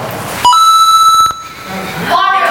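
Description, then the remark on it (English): A bright Mario video game coin-collect chime plays once, as a sound to be identified in a quiz: a quick blip jumping to a higher, ringing tone that fades after about a second. Muffled chatter and background noise surround it. “Yeah, keep collecting those coins.”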